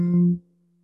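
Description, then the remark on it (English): A single steady hum from a human voice on an exhale after a deep breath, in a throat chakra exercise, held at one low pitch for a moment before it quickly trails off into a faint lingering tone. “Hum on exhale.”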